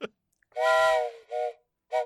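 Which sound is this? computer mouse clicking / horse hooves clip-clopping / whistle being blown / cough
whistle being blown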